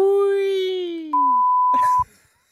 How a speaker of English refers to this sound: If I say something, I'm going to have to beep and then I accidentally miss it